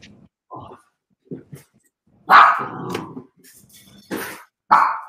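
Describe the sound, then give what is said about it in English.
A dog barks in short, irregular bursts, with a louder stretch of barking and rough growling in the middle and two more sharp barks toward the end. “Tibbsy's just disappeared. Dog needs some help.”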